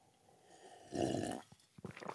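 A loud, airy slurp of hot coffee lasts about half a second, followed by a few soft mouth clicks and a gulp. No one speaks.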